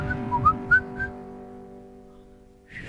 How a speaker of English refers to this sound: I can't whistle. Thus the dawn of communication. The dawn of communication.